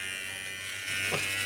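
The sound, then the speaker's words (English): Electric hair clippers buzz steadily with a bright, humming motor drone that grows slightly louder partway through, with a brief shift in pitch as the blades meet something. No one speaks. “Sounds like it is the Lawnmower 3.0, but it sound like you're mowing the lawn.”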